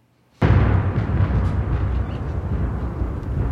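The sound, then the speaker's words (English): A thunder sound effect crashes in after a brief silence, a sudden loud boom that rolls into a deep, sustained rumble, holding steady until the end with no voices over it. “That was the worst come in of thunder.”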